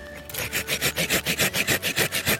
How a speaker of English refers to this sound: This I think it's called a Japanese style blade. It cuts on the push and the pull. It's very nice for this sort of thing.